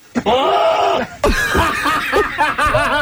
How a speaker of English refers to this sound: That is my favorite video of the day. Your super cut of goats yelling like people.